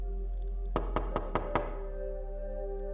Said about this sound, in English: After she hung up, she said there was a knock at the door. She answered it, but there was nobody there.